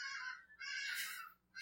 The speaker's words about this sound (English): Sorry, guys. That's a bird. That's... Yeah. Wow. It's a pterodactyl.